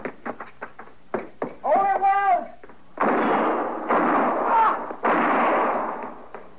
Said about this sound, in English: You were close, but he missed me. Well, you two didn't miss him. I don't know which one of you fired first, but either both would have done it.